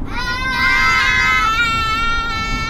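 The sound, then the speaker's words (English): A group of children, told to be as loud as they can on the count of three, yells together at full volume in one sustained, high-pitched shout, holding loud for nearly three seconds with overlapping voices. “Okay, on the count of three, I want everybody to be as loud as you can, okay, and yell.”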